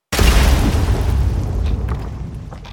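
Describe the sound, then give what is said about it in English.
A sudden, loud explosion erupts with a heavy low-end boom, then rolls on as a rumbling, crackling blast that slowly fades over a few seconds. No voices are heard. “And the sounds of muffled weeping are lost amid the echoes of the blast.”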